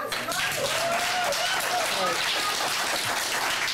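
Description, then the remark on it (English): A crowd applauds in a steady, dense wash of clapping that holds at an even loudness throughout, with faint voices calling out and a raised voice briefly rising above the noise. “Stop fucking it's applauding.”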